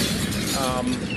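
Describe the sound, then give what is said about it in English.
A loud bomb sound effect signalling that time is up: a dense, crashing roar with a shattering, glassy edge that holds steady for about a second without fading. “I don't know if you heard that, but the bomb went off.”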